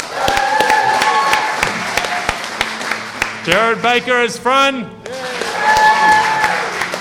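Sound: audience applause and cheering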